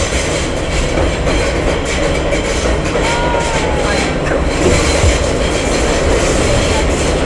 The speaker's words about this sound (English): To me it sounds like a bunch of pterodactyls. Yeah, our train driver's like driving very fast.